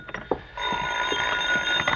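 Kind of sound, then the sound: household object, telephone ringing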